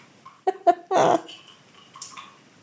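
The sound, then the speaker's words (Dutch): A female cat playing with the cord of a roller blind in a home living room: two quick clicks, then a louder rattling scrape, followed by fainter scattered knocks and jingles. “Nou, die poes die gaat helemaal los. Nu pakt ze het snoer van het rolgordijn.”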